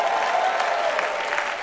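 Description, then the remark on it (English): An audience claps for the Lord together in a steady, dense wash of applause, many hands beating at once without a clear rhythm, loud and sustained throughout the short stretch with no voices over it. “Give the Lord a clap up over here.”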